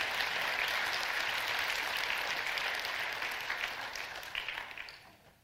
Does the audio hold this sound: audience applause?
yes